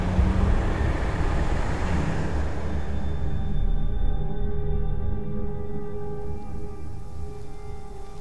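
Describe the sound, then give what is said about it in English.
An approaching lorry's heavy engine rumbles steadily and loudly, deep and droning, with a low motor hum that settles into steady tones partway through. No voices are heard. “look sharp. Lorry coming.”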